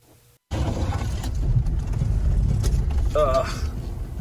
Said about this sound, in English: Let me play this clip for you of what it sounds like. This is going to be this could be a reenactment of Lightning's very first off-road trip in the TRX. This is going to be bad.